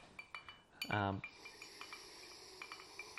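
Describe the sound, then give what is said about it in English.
Ice cubes clink and rattle against a glass of alcohol in quick, light taps as it is swirled to chill the drink faster, fairly quiet, with a short voiced sound breaking in near the start. “All right, we have some ice cubes. I'm going to swirl it around a little bit to increase the speed it chills.”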